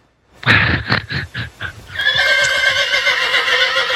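A loud horse whinny: a quick run of shaky, pulsing bursts that gives way to a long, sustained high-pitched neigh, with no voices around it.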